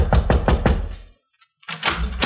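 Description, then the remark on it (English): Four firm knocks on the wooden door of apartment 2A on the second floor, in quick, even succession, followed by a short pause and then a second burst of louder knocking. “We went up a flight of carpeted stairs and knocked on the door of 2A.”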